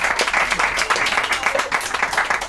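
A crowd applauds steadily for a band, dense overlapping claps filling the space at a fairly loud level, sustained without pause for a couple of seconds.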